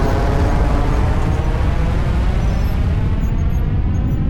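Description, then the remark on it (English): A deafening, continuous rocket engine roar at lift-off of Elon Musk's rocket from the American base on Omelek in the Marshall Islands, with a gigantic cloud of flames and smoke; a dense rumbling wall of noise heavy in the bass that holds steady and loud throughout, with no voices. “The engine starts with a gigantic cloud of flames and smoke. The noise is deafening, like thunder striking in broad daylight.”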